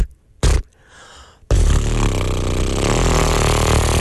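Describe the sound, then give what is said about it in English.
Someone imitates a lawnmower starting with their lips: a brief sputter, a softer buzzy stretch, then a loud, steady engine-like rumble that holds to the end. “The lawnmower puts its blade down. Let me hear your lawnmower. And it starts funny.”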